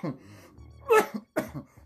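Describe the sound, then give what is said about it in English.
Two harsh, forceful coughs after smoking a bowl of Purple Punch Cake cannabis from a Las Vegas dispensary, separated by a brief pause, with softer throaty rasping and breathing before and between them. “Ooh, coughing up a lung over here.”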